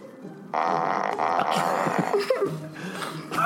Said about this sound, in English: Wait, what does burp mean? We established just farts only.